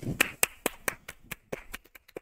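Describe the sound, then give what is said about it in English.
A series of sharp hand claps, about a dozen in quick succession, starting strong and growing fainter and faster toward the end, with no one talking. “I don't like it when he claps and I don't clap.”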